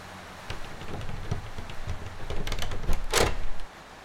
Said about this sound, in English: Got it. Come on, door. Let's work with me here.